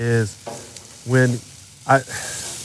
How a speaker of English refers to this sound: Case in point, right now, by the way, I'm flipping my chicken. Hang on one second, let me flip my chicken. I don't know if you can hear that. You might be able to hear it.